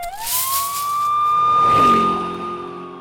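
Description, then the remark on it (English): A police car siren wails loudly, rising in pitch, holding a long steady tone, then dropping lower as if the vehicle passes by. No one speaks. “Oh shit, dude, it's the cop guy again.”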